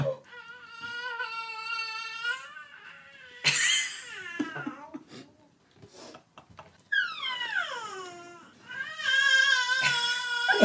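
A 5-month-old baby cries in long, loud wailing bursts with high, strained pitch that glides up and down, broken by short choppy whimpers in between, with no talking.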